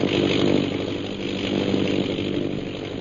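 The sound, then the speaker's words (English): An airplane circling overhead, its engine a steady, buzzing drone with a rough low rumble that holds at an even loudness for the whole stretch, with no voices. “Several hours later, the sound of an airplane circling overhead brings Peter Hawkins and Shanghai Lil to the window of their cell.”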